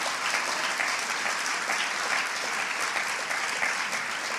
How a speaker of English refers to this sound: Someone give Jesus a clap. Gib Jesus mal ein Dankopfer.